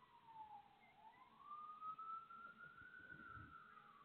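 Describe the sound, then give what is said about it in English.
A police siren wails in a slow, sweeping rise and fall, faint over a low rumble of city traffic in New York, with no one speaking. “And I don't know if those are the cops coming to interview me about what Eric did yesterday.”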